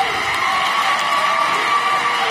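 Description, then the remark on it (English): A crowd cheers for a man giving a speech, a steady, loud roar of many voices that holds at an even level throughout, with a faint whistle-like tone running through the noise. “And cunts are cheering for him.”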